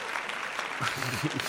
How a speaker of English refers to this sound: And put an applause track in for that. Yes. We need some applause in our lives. I mean, life. I could. I need applause. I don't get them. I'm just going to say. I need more claps.